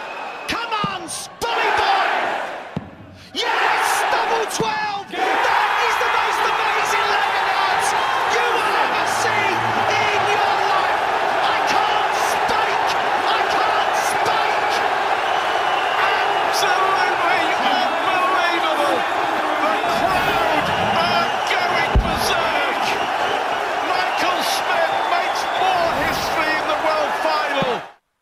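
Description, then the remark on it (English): A huge crowd roars and screams continuously at the World Championship darts final as Michael van Gerwen goes for a nine-darter, a dense wall of cheering and yelling that swells after a brief lull near the start and holds loud for the rest. “There are throngs of people screaming along with this crazy announcer.”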